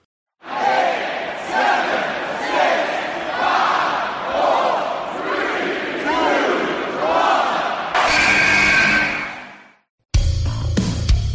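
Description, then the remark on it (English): A large arena crowd roars and cheers wildly for about eight seconds for Kevin Holland's finish after his comeback in a fight, a dense, surging wall of many voices with rising and falling swells, before cutting off abruptly. “The crowd was absolutely wild for this.”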